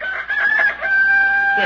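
A rooster crows loudly, one long drawn-out call with a strained, rising-then-sustained tone, heard alone without any talking.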